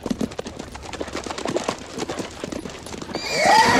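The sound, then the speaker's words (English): Hooves clip-clop steadily at a walking pace, then a horse lets out a loud, rising whinny near the end. “We'll walk the horses.”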